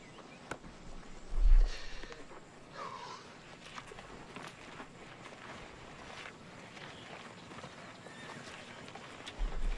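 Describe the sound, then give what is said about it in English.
A horse moves, its hooves clopping in an uneven rhythm over a steady rush of wind and outdoor noise, with a few louder low thumps along the way. “Oh, more damage with horse.”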